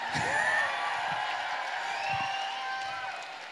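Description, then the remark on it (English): An audience cheers and applauds steadily, with high whoops and whistles rising over a dense wash of clapping, holding strong throughout before easing slightly at the end. “Give it up one more time”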